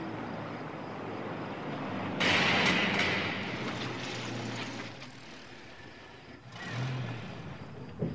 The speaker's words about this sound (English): I think I even hear the truck in the distance.